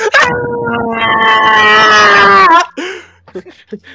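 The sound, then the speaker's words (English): A loud, maniacal shriek holds one high, wavering pitch for about two and a half seconds, then bends downward and cuts off, followed by a few brief, fainter sounds. “That's his maniac shriek.”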